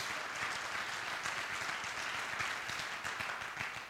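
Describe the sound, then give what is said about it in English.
A crowd claps hands to thank God for a small circle of influence, in steady, dense applause, a loud continuous wash of overlapping claps lasting the whole stretch and easing slightly at the end. “I want you to clap your hands and thank God for a small circle of influence.”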